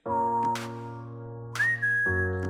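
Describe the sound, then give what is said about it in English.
Someone tries to whistle a tune, producing a couple of thin, wavering held notes that step upward, over a steady droning musical background with brief breathy bursts. “Can't whistle. I can't whistle either.”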